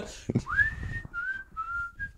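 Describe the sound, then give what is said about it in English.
A short whistled melody of four clear notes: a long rising glide, two steady tones, then a brief final note. Fairly loud, with a soft thump and low rumble at the start. “It's even got whistling in it!”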